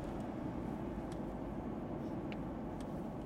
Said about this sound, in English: Just a police car. Driving past the boys.